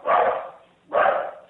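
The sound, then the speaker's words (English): A dog barks twice, two loud woofs spaced about a second apart, each trailing off quickly, with no other sounds around them. “She's normally so quiet except for when things buzz. Yeah, that's how my dog is too.”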